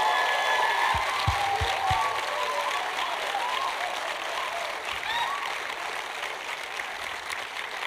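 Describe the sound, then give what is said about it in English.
A church audience claps steadily and loudly for several seconds to thank its pastors for their leadership, a dense wash of applause with scattered cheers and a few sharp, rising whistles cutting through. “And I want you to clap and cheer and whistle and scream”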